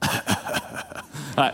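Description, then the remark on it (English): A run of theatrical, exaggerated coughs from one person: several short, raspy bursts in an uneven rhythm, ending with one louder, drawn-out hack. “I cough a little louder.”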